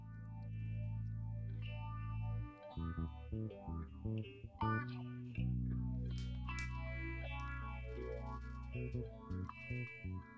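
A hip-hop track plays with heavy bass and effect-laden, distorted synth layers, dropping into choppy stop-start bursts midway before the full groove returns. No one speaks over it.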